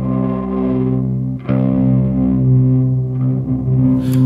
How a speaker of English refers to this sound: this thing does like a reverse shimmer verb, and that's the setting that I have it on right now. So it does, rather than doing the reverb send up an octave, it does the reverb send down an octave.